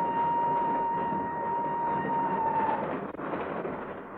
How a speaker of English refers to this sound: Not until the train started to move from the platform.